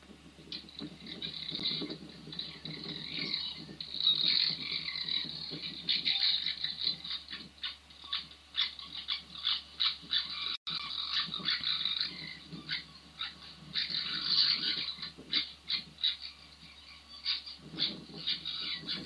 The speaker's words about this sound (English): An injured rabbit? No, it sounds like it. Sounds like something in distress. That's actually a vixen having a dust up with her cubs.